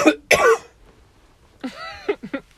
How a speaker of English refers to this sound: It's unprofessional of me to have a cough.